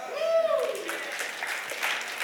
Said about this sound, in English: We don't get as many claps like that because most of us truly aren't rooted and our hope isn't fully founded in the hope of the resurrection.